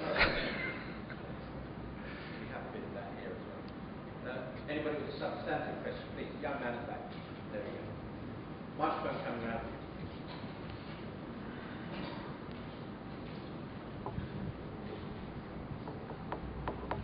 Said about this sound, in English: Turn off the air conditioning, can't hear. Can you turn the air conditioning? Party Central controls it.